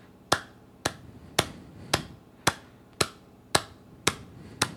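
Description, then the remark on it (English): Sharp hand claps by a former drummer ring out in a steady, even rhythm, about nine of them in quick succession, crisp, with no voices in between, clapping out how fast his thoughts are. “And so I'm a former drummer, so I'll clap out how fast my thoughts are.”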